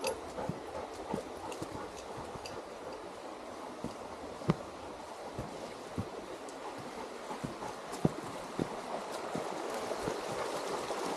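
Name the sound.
flowing stream water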